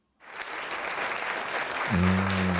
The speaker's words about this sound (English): Applause. Thank you.